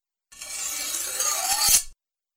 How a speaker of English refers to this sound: And how about a slashing or cutting sound for the slashes?